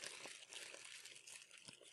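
Plastic bags crinkle and rustle continuously, a dense, crackly rattle with a few sharper snaps, fairly quiet, with no one talking.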